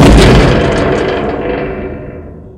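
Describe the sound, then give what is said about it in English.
A heavy metal door at the Globe Theatre in Southwark slams shut with one loud, booming impact, followed by a long ringing, reverberant tail that slowly fades. No one speaks. “She followed him in and then slammed the heavy metal door shut.”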